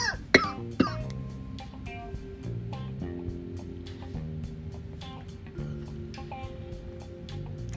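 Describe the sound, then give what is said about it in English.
Two sharp, close coughs burst out in quick succession near the start, followed by a steady musical backing with a regular beat that continues to the end. “All of the church's bigotry is making me cough.”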